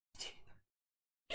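A single short, hissy stifled sneeze, close by and fairly loud, followed by about a second of silence before another sharp breathy burst begins at the very end.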